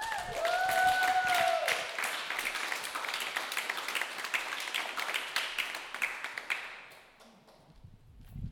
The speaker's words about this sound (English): I want you guys to give a very warm round of applause